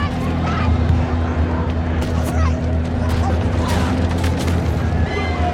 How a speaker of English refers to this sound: You see the literal chaos. Black people, families, kids running for their lives, being attacked in the street. Fires everywhere, explosions, gunshots.